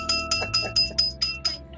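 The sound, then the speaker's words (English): Glasses clink together in a toast, about seven bright, high ringing taps in a quick, steady rhythm, each leaving a short shimmering tone, with no voices. “Clink, clink, clink, clink.”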